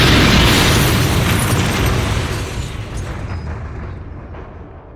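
A loud explosion roars at full force, then its rumbling blast and hiss of debris slowly fade away over several seconds, with no voices.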